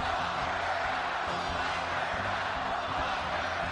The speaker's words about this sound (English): It's a scene we haven't witnessed in months, a large indoor gathering with thousands of supporters cheering President Trump, a campaign relaunch one Republican strategist said was much needed after a brutal few months.